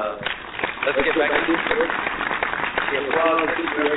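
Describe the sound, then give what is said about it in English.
A steady wash of applause fills the full four seconds, dense crackling clapping mixed with crowd voices and cheering, staying loud and even throughout. “You got to let the applause roll.”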